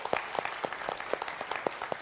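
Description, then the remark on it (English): Audience applause for people who have just prayed to follow Jesus that night, with distinct, fairly sparse claps in an uneven rhythm, moderately loud, over a soft wash of crowd noise with no voices. “Let's have a hand for those people who made that choice tonight.”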